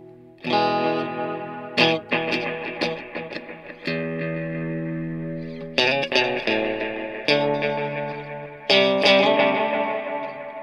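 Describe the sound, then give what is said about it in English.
Clean electric guitar chords strummed several times through effects pedals with no distortion, each chord ringing out and repeating with a shimmering, chorus-like wash. Fairly loud, with no voices. “I don't even know if I can play guitar.”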